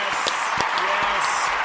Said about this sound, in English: But for real, great job. Let's give him a little round of applause again, everybody.